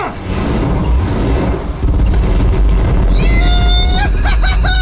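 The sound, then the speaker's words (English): A loud explosion of a colony, from the audio drama Marsfall, with a deep, sustained rumble that roars continuously, briefly dipping before surging again, while high ringing, whistling tones rise over it near the end. “Check out that explosion!”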